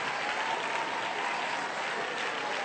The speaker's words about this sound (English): One just received the gift of the Holy Ghost just now. Can we clap our hands and thank the Lord?